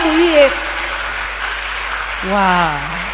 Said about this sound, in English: As they're coming, clap for them. Is it okay to clap for them?